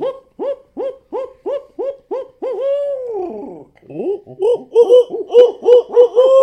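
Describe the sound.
A person imitates a barred owl, letting out a rapid series of rhythmic hooting calls that rise into a drawn-out, wavering hoo, then breaks into a cackling run of hoots, loud.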